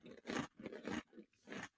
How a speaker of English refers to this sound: I'm nibbling on a cream cracker.